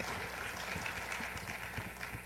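An audience claps steadily throughout, a dense wash of many hands at an even level with no talking. It sounds somewhat distant and fairly soft, as if heard from across a room.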